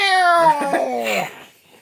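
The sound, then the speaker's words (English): A person imitates a cat's drawn-out meow as the battle cry of the character Ghost Cat, a single loud, wavering vocal cry about a second long that bends in pitch before fading out. “Meow. Hear his battle cry.”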